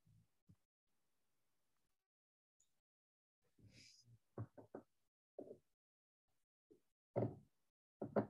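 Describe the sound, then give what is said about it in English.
Faint, muffled knocking on a door during an Overeaters Anonymous meeting: a quick cluster of three raps followed by a few more scattered thumps, with some soft rustling in between. “Oh, and I've got somebody at the door.”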